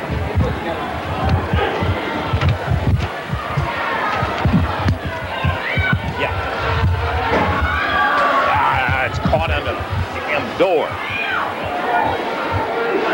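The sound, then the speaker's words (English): A loud, chaotic brawl at the Tupelo Sports Arena, with wrestlers Latham, Ferris, Dundee and Lawler fighting in the concession stand; a crowd shouts and yells over one another, punctuated by thuds and scuffling, sustained throughout. “They got a hell of a fight going on down there.”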